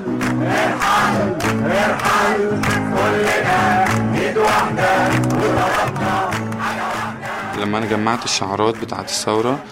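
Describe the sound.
A large crowd chants loudly and rhythmically in unison, voices rising and falling in repeated call-like phrases, with a lone voice leading near the end as the mass of shouting continues.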